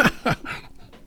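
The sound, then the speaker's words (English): Someone takes a drink of water: three quick, breathy sips or gulps in rapid succession, followed by a brief quiet exhale, with no talking. “So a little bit of water.”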